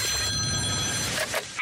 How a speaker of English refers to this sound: Hello? You still there? My telephone.